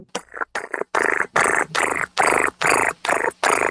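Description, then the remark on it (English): A voice imitates a cat's purr with about nine loud, rough, rolling bursts in a steady rhythm, each with a growly, vibrating texture and brief gaps between them. “Purr, purr, purr, purr, purr, purr.”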